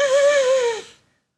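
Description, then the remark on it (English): A single sharp, wheezing inward breath from a man, a whistly gasp with a steady pitch that holds for almost a second before trailing off into silence. No talking. “The inward breathing.”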